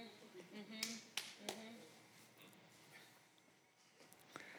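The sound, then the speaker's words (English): A few soft, scattered claps from an audience, quiet and sparse rather than full applause, with faint crowd murmur underneath and a lone clap near the end. “I mean, thanks for the gentle golf claps, but you might want to buckle up, some of you.”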